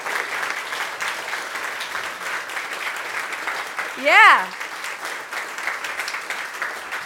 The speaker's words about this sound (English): So let's stand and applaud God. He's a good God in gratitude for what he has done.